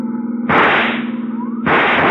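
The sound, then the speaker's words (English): Two abrupt, loud bursts, a rifle shot blowing out a car tire, each cutting in over a steady engine drone and trailing off into a long rushing hiss. “There goes the tire.”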